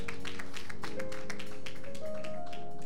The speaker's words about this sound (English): Clap those hands as you take your seats.